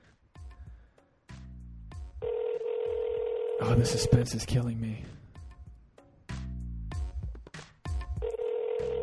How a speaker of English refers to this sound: How many ringtones does he have? Dial tones, I mean.